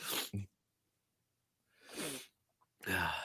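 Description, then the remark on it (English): A short burst of loud sneezing caused by allergies: a sharp, explosive sneeze, a pause of silence, then two more breathy sneezes in quick succession with no talking. “So yeah, we both have allergies today, so sorry about the sniffles.”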